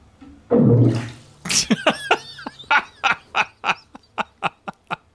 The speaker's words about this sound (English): It is the most satisfying sound, an iguana fart underwater, because it sounds like a miniaturized torpedo going off. So sad. You know what? Here, I'm going to play it right now. Listen to this.